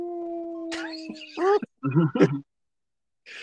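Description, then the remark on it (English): A person imitates a dog's howl with a few short, rising vocal yowls, fairly loud, after a brief steady tone; a faint breathy noise follows at the end. “And this is usually where I do my dog sound.”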